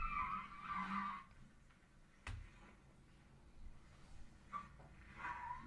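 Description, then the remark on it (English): The tires of a Tesla Cybertruck squeal and skid in repeated bursts as it struggles for grip, with a sharp thump midway and a low engine rumble underneath, no voices present. “And it's the Tesla is more slippery. Slip and slidey. Yeah, like it's working really hard.”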